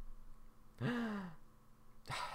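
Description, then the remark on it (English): A breathy exhale into the microphone, drawn out with a slight voiced sigh, followed after a short pause by the start of another loud breath. “Can you hear our breathing podcast?”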